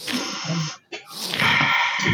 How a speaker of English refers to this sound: All right, so let the audience hear again. Everybody sniff for him.